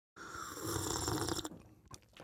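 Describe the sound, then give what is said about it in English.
A single long, airy slurp of chai with cinnamon creamer from a cup, lasting over a second, followed by a few soft sips and a faint clink near the end. No talking. “You can almost hear the deliciousness in this slurp.”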